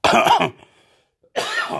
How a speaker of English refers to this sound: Always coughing and talking, mixing it up, mashing it up all the time.